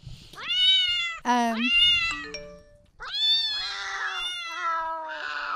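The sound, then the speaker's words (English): A cat meows loudly and repeatedly, several drawn-out, rising and falling cries in a row, with a brief run of short stepped piano tones between them and no talking. “Cat piano.”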